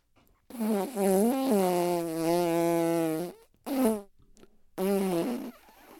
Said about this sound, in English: Funny farts.